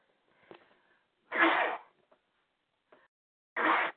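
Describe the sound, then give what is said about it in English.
Two loud sneezes, about two seconds apart, each a sharp breathy burst preceded by faint intakes of breath, with quiet pauses between and no talking. “I had a sneeze there.”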